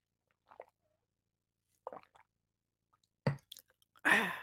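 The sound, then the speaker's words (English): Someone takes a sip of an ORS rehydration drink: a few soft wet slurps and swallows spaced apart, ending in a louder gulp and a breathy exhale. No one speaks. “That's what's in here, which I should probably take a sip of it.”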